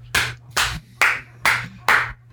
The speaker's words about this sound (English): Round of applause, dude.